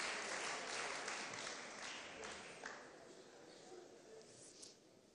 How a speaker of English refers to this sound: Now give yourself a clap offering. Gib dir mal selber einen Applaus.